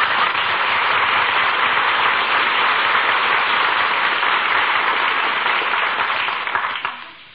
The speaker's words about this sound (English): Maestro acknowledges the applause, takes a bow.